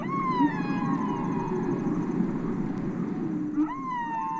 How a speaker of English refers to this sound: We're trying to translate whale speak. Do I think it's going to be the same sort of full, rich language that humans have? No, I certainly don't. But I think it will have some very complex and interesting things.